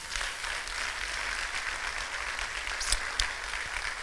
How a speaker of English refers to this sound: Please give them a big hand clap.